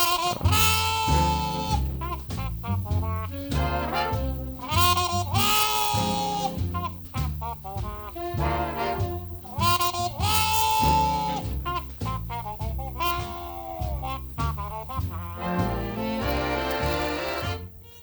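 A plunger-muted trumpet growls and wah-wahs through a bluesy phrase, its raspy, bleating tone bending and swelling over a steady band accompaniment with walking bass and rhythmic chords.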